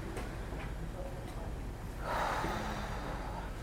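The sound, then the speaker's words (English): A group of people praying takes a slow, deep breath together, producing a soft breathy rush that swells midway through against a steady low murmur. “Just deep breaths.”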